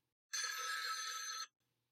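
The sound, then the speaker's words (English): A single loud burst of an old-style telephone bell, a harsh rapid metallic jangle lasting just over a second before cutting off abruptly, with no voices around it. “Phantom phone calls?”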